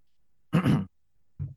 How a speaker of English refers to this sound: And why do I always end up getting coughing when I get to recording these episodes? So one second, let me take a drink.